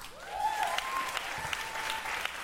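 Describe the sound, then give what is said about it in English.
Sustained audience applause from women answering a comedian's question about whether they have dated a Latino man, a dense steady wash of clapping hands with a few scattered whoops rising above it, holding at an even loudness throughout. “By applause, how many women here have dated a Latino man?”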